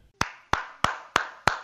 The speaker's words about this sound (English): Who's clapping? Is that Leroy? That's me clapping, fool.